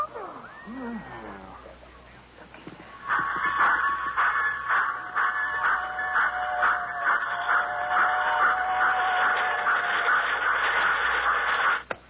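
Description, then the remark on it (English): Miniature model trains of a complete model railroad in a suitcase, reduced to the size of a cigar box, running: a steady, high-pitched mechanical whir with a fast, regular clatter begins a few seconds in and continues evenly to the end, after a brief quieter stretch with faint sounds. “As you can see, I have in this suitcase a complete model railroad reduced to the size of a cigar box.”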